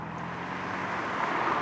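Steady city traffic whirs past with a broad, continuous road hiss at the corner of Woodward Avenue and Canfield Street in Midtown Detroit, swelling slightly louder near the end as a vehicle approaches. No one speaks.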